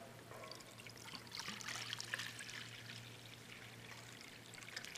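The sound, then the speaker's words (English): Water pours steadily into a basin, a continuous splashing trickle with a faint low hum underneath, lasting several seconds without any voices. “He took the basin of water.”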